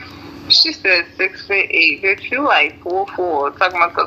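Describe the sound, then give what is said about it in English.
A person in a lobby talks steadily on the phone with a thin, band-limited tone. The words are unclear, in short bursts with brief pauses. “I got somebody in my lobby talking on the phone, so I hear somebody.”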